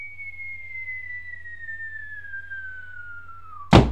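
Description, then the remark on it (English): A hat falling from someone's head, heard as a long, smoothly descending whistle tone that slides downward for several seconds, then ends in a sudden loud crash as it hits the ground. No voices. “It fell suddenly from my head and crashed to the ground.”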